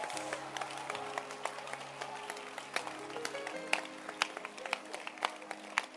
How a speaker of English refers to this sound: So when you see a man who has been with a woman for 2 months, 2 years, 10 years, clap your hands for patience.